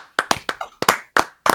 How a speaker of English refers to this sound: And that's going to do it, folks. That's the show. Let's clap it out.